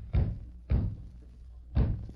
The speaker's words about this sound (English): What is that? Sound like someone trying to rap on the door. Mighty weak door rapping.